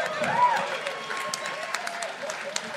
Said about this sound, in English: You shouldn't applaud that.